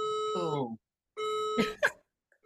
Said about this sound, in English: I've gotten a fire alarm going off.